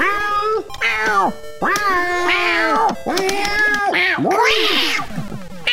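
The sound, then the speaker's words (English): A kitten, hit on the head by a falling bell, meows loudly and insistently, a quick run of drawn-out, wavering yowls following one another with barely a pause, with no talking. “God damn, kitty cat got claws.”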